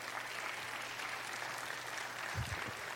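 A steady round of applause from a crowd, many hands clapping in a dense, hissing wash that holds even throughout, with a couple of low thumps near the end.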